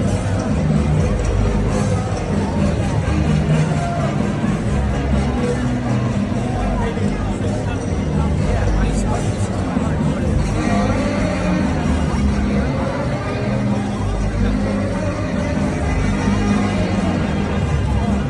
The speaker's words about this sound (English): Regardless, President Trump is very popular. Here's the crowd in South Carolina for the Trump rally over the weekend.